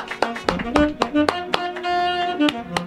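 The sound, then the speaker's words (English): A horn plays a short run of sustained tonal notes, punctuated by about ten sharp, evenly spaced percussive hits. It is fairly loud, with no talking. “That's a horn. That is a horn.”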